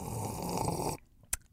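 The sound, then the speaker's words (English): A loud, airy slurp of tea lasting about a second, breathy and continuous, then it cuts off, followed by a single sharp little click in the quiet. “Because I'm obviously sipping tea.”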